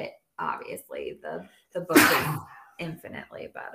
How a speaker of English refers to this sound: Bless you